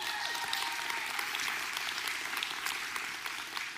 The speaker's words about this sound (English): I know a lot of you are clapping for yourself because you were part of the people doing that, but thank you.